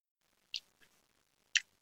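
A grandfather clock ticks slowly and steadily, two crisp clicks about a second apart with a softer tock between them, fairly quiet with no other sound.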